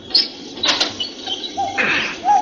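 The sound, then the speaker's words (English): The jammed heavy door of Terra Castle is tried but won't give: a few rough rattling, scraping bursts with short high creaky squeals, moderately loud, with no talking. “It won't. It's jammed.”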